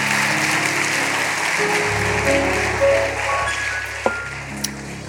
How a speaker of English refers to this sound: Come on, put your hands together. Give the Lord a hand clap.